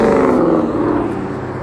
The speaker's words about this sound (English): That was a truck, believe it or not. That wasn't the charger from earlier. A truck made that noise. A fucking truck sounded like a charger. That was a Ford XLT.